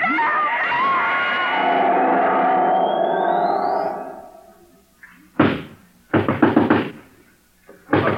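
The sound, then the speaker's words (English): A dense electronic whirring with a rising whine fades away, then heavy pounding on a door as someone tries to break it down: a single loud thud, a rapid cluster of blows, and one more bang at the end. “He'll break down our door in a minute.”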